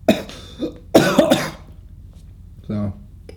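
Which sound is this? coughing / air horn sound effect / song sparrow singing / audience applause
coughing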